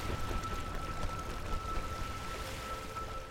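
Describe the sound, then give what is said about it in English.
A steady, rushing wash of ocean surf on a beach with white sand, continuous and fairly soft without distinct individual breaks, with no voices present. “The waves crashing on the beach.”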